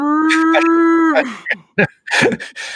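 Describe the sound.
A person gives a loud, drawn-out mooing call, imitating a cow with a steady low tone that slides down at the end, followed by a few short breathy sounds and laughter.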